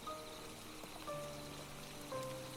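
Steady rain falls in the woods as it gets dark, heard from shelter under a big broad-leaved tree, with a soft, continuous patter, fairly quiet, while faint tonal calls rise and fall about once a second in the background.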